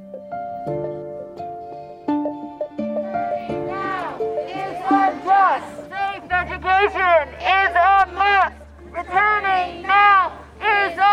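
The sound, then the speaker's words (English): A crowd of protesters, led by a high school science teacher, chants loudly in rhythmic, repeated bursts of raised voices at the Pinellas County School Board building on a muggy Tuesday morning, following steady sustained tones at the start, with a low continuous hum underneath the later chanting. “leading the crowd of protesters at the Pinellas County School Board building on a muggy Tuesday morning.”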